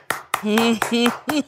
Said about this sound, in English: Round of applause. Well done. You did it.